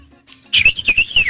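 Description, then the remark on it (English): A person imitates a bird call with a high, warbling whistle that pulses rapidly for about a second and slides downward at the end. It is loud and clear, with no talking. “And no judgment, or maybe lots of judgment, make a bird noise.”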